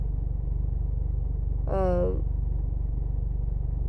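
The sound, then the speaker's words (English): A steady, low engine rumble with a faint pulsing texture, like a car idling, heard from inside the vehicle. A brief burst of voice rises over it midway. “Yeah, it's just been a lot, and, you know, I'm sitting in my car.”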